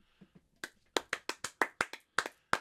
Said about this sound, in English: Applause! Yeah. We know how to applaud each other.